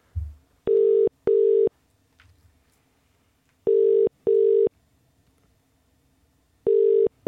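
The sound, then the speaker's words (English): Outgoing phone ringback tone while calling someone at McGee's, a steady electronic double ring repeating three times with pauses between pairs, clear over faint background hum, with no one speaking. “Let's phone him just now.”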